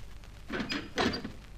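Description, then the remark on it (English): A door is opened for a visitor, making two short scraping, rattling bursts close together, with only a quiet background before and after. “Hold it, someone at the door.”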